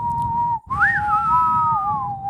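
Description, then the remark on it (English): A person whistles a short, slow melody, a western showdown tune: a steady held note, a brief break, then a swooping rise and gentle glide back down, with no talking. “Can you whistle the Gunsmoke theme?”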